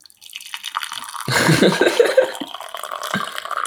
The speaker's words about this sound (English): Do you want to pour some more tea before we Yes.